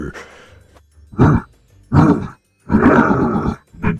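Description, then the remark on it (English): In a tabletop role-playing game, a person voices a monster's growls as the tripped monster growls and gets up: four rough, guttural bursts separated by short pauses, the third longest and loudest, with a brief, quieter snarl at the end. “And it growls and then gets up and it spends half its movement getting up.”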